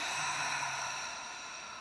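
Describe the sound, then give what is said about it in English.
A long, forceful audible exhale pushed out through the mouth during a guided breathing exercise, using the abdominal muscles to push out stale air: a steady airy whoosh lasting nearly two seconds that tapers slightly at the end, fairly loud with no talking. “Using those abdominal muscles to extract that stale air. Let's do that one more time. Inhale. Audible exhale.”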